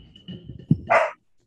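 A female dog lets out one short, sharp bark, fairly loud, preceded by a moment of low rumbling background noise, with no one speaking.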